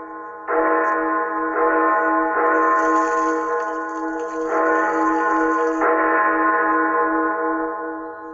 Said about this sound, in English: Bells? How long the bell tolls? Do you hear that? Hear what?